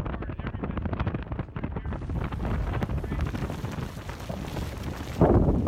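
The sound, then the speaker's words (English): Strong wind gusts roar and buffet a microphone at a fully exposed coastline at Panama City Beach, the wind coming off the water as it picks up ahead of an approaching eye wall; a continuous loud rumble that swells into a harsher, louder blast near the end. No voices are heard. “Got some strong gusts going on.”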